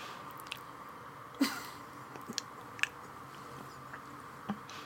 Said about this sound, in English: Keep chewing. Mom, look. Keep chewing. That is a chew.